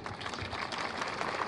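Dense, steady murmur of a large outdoor crowd gathered in Melbourne on November 25th before the March Against Family Domestic Violence, many voices blending into a continuous hubbub at moderate volume with no single speaker standing out.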